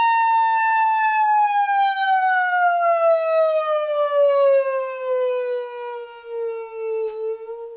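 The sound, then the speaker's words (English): A singer performs a vocal siren warm-up, the voice gliding in one long, smooth, continuous slide from a high pitch steadily downward, loud, with no talking. “It's literally a siren though, and like I love doing them.”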